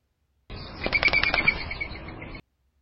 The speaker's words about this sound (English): The Eurasian collared dove also has a wing whirl that can sound like this.